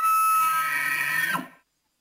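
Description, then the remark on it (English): A single elk call played from YouTube: a loud, shrill, whistling bugle with buzzy overtones that holds for over a second, then drops in a quick downward slide and cuts off into silence. “Thanks to the magic of YouTube, here are some elk noises.”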